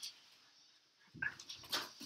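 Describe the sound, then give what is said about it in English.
After a second of near silence, dogs break into excited whimpering and short yelping cries as someone arrives home, a few quick bursts in a row, fairly faint. “Now the dogs are really going to freak out.”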